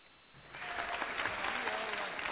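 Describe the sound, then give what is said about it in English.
A crowd breaks into applause, swelling quickly after a quiet start into steady, dense clapping that holds at full volume, with faint voices mixed into the noise. “Round of applause.”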